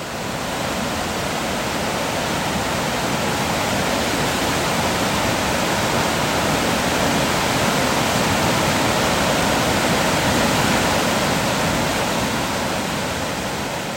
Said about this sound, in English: Like, it descended really close to the river. We were able to get really close and hear the rushing water in lots of different places.